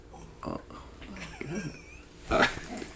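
A dog makes a few short, snuffling grunts and whiny yips in irregular bursts, the loudest near the end, fairly close by, with some faint room noise around them.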